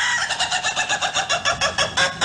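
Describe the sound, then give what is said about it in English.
A rooster calls loudly, its voice breaking into a quick, even run of harsh pulses that carries on for a couple of seconds, with no talking. “It really is a great crow.”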